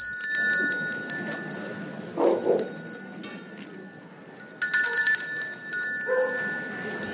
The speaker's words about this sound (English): Anyway, I've recorded a little bit of sound from each of them. So first up, you'll get to listen to some bells from the Holy Monday procession.